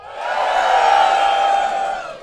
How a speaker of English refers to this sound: Sounded like some of you, that was your first time cheering.